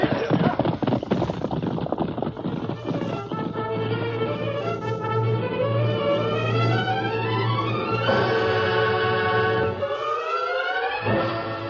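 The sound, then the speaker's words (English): Rapid clip-clop hoofbeats pound steadily at the start as the Lone Ranger rides at top speed by moonlight, then are swept up under loud, swelling orchestral music with rising and falling tones that carries on to the end. “Bob Willis and Tonto heard the thunder of approaching hoofbeats.”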